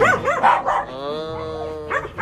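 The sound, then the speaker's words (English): A few quick dog barks, then a long drawn-out yowling tone, and a couple more barks at the end. No one talks over it. “Yo, when a dog hits you up, it hits you in your woof, yeah, bro.”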